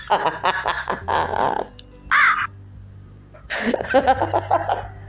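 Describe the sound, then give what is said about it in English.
Crows caw loudly and repeatedly in harsh, raspy bursts, with a short pause before another cluster of calls, over a low background hum. “You hear the crows? They're coming for me, man.”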